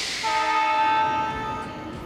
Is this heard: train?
yes